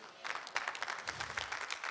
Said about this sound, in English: Is that the only applause I'm going to get for that statement?